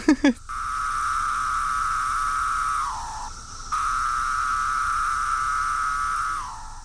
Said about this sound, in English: It's Magis cicada septem decem. Which literally translates to the magical cicada that appears every 17 years. It's got the characteristic pharaoh call, like pharaoh.